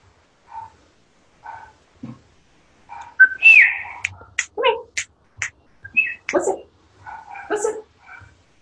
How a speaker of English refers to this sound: Let's pause while the dogs are barking.